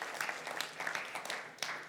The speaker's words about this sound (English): Isn't that a beautiful prayer? Good, you should clap for Jesus. Don't be clapping for me, just clap for him.